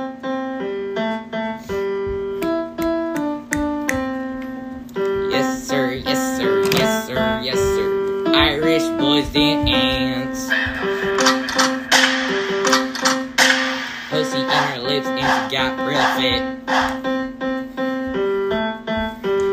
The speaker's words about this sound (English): The beat's not ready yet, sir.